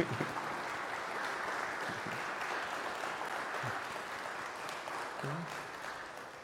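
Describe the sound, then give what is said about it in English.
A church audience at Trinity applauds the music director's 15th anniversary of joining the staff, a dense, steady wash of many hands clapping that holds at an even level, with a few faint voices mixed in beneath. “And we're let's give her a round of applause for that, first of all.”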